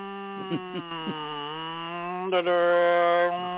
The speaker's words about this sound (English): That's the motor subway cars. Is that what they sound like? And the subway sound.